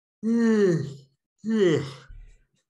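Two loud, close-up vocal yawns in a row, each a drawn-out voiced exhale sliding downward in pitch, followed by a brief low bump against the microphone.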